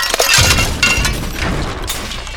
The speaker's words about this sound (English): Without warning, a football-sized pearl smashed through the window, scattering shards of glass into the corners of the room, into the haphazard piles of clothes and materials